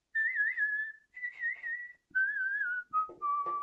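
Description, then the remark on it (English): A short whistled little song by the story character Peep Peep, in a few smooth, wavering phrases that step gradually lower in pitch, clear with brief pauses between them and no talking. “They all just got kind of tired, and Peep Peep started singing a little song for them. It was whistling for them.”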